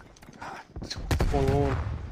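Video game gunfire: a few sharp, punchy shots crack out in quick succession, followed by a dense, rumbling stretch of firing with a brief droning tone rising above it.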